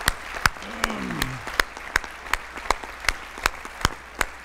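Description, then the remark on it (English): A church audience claps in steady unison for a former missions director: about a dozen sharp, evenly spaced claps over a soft crowd murmur, with a brief voice calling out near the start. “Can we give it up”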